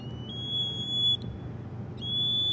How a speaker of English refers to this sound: They also have a buzzer, which I'm gonna plug in. It's gonna be really annoying. So just get ready for that.